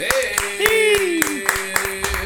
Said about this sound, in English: And we are off your first Philadelphia Eagles win week one. Clap it up, boys!